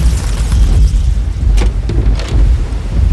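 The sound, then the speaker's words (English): A loud thunderclap at night rolls on as a deep, continuous rumble, with a few sharper crackles breaking through near the middle. No one speaks. “Sorry, the thunder and that swarm of bats startled me a little bit.”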